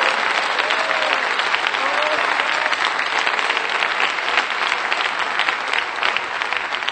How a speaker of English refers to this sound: Come on, clap your hands and give God praise for it right now.